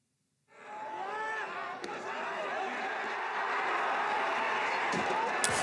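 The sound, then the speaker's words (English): A large crowd of Japanese people, around 100 including the carriers, shouts and cheers loudly and continuously as two portable shrines (Mikoshi) are sent into each other in hachiawase, people climbing onto each other's Mikoshi, with a few brief thuds and knocks cutting through the roar of many overlapping voices. “All right, that's the collision between two Mikoshis and crowds of cheering Japanese people as they climb onto each other's Mikoshis and cheer.”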